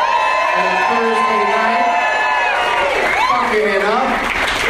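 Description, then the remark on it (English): A comedy club crowd at Good Nights in Raleigh, North Carolina applauds and cheers steadily, dense clapping mixed with rising whoops and shouted voices, staying loud throughout without a break. “But now a lot of people just know it as Good Nights, and it's a great comedy club here in Raleigh, North Carolina, and a great crowd here tonight.”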